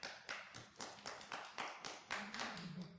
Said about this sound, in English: How come you applaud him? You don't ever applaud me.